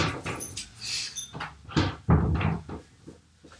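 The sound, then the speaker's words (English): A door is handled and pulled open to let a pet out: a cluster of wooden knocks, latch rattles and scraping thumps over a few seconds, with no talking. “I gotta let the monster out. He's mad I closed the door.”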